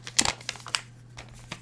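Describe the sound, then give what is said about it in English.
Crisp crinkling of handwritten slips of paper being unfolded and handled, a cluster of sharp rustles early on followed by a few softer scattered crackles, with a faint steady hum underneath. “I like the handwriting on these slips of paper.”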